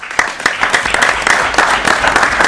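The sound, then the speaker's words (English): A city council applauds steadily, many hands clapping in a dense, continuous patter at moderate loudness with no voices standing out. “You had a nice picture with the mayor, and the city council is clapping for you.”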